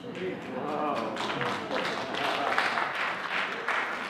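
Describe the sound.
A crowd applauds steadily for about four seconds, a dense wash of many hands clapping at moderate loudness, with some voices mixed in underneath, after the speaker announces being voted in as president of softball in the town of Gorm.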